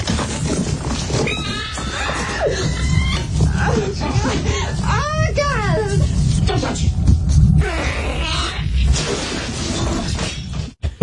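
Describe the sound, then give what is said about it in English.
The chest burster creature from the movie Alien screeches in shrill, wavering cries that swoop up and down in pitch, repeating over a harsh, rumbling noise bed for about eleven seconds. “reminded me of the chest burster creature from the movie Alien.”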